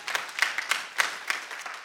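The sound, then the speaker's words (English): A crowd claps together for the speaker's wife of 40 years at a service, in a brief burst of applause. Sharp, overlapping hand claps form an irregular patter that stays fairly steady in loudness throughout, with no voices over it. “No, clap for her.”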